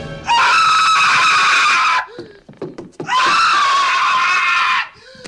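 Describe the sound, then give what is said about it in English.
Two long, piercing screams from a movie character screaming at a tarantula ring out loud, each held for well over a second, with a short gap of faint clattering noises between them. “The first one has the tarantula scream, which is...”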